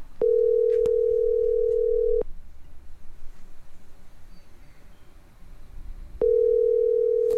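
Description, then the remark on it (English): A phone ringback tone: a steady, fairly loud low hum lasting about two seconds, then roughly four seconds of quiet line noise before the next ring begins. “Oh, it's ringing.”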